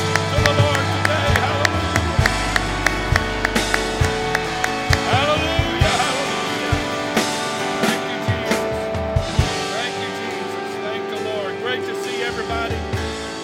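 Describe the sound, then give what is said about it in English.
An audience at Grace Church claps their hands in a steady rhythm, sharp repeated claps over loud music with voices singing along, continuing throughout. “Let's clap our hands, everybody. Clap your hands.”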